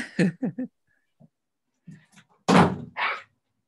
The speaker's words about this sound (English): Okay, just shut the door. Okay, thanks. Nobody comes in.